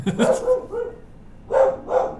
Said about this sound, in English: there goes my dog barking over the mailman.